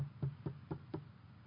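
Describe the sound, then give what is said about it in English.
Four evenly spaced knocks on a door, dull and solid, rapping in a quick steady rhythm with no voices, fairly quiet. “But a day comes, unless the rapture comes first, death will come knocking at the door.”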